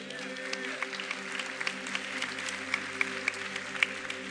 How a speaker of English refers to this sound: Let's give those people a hand clap.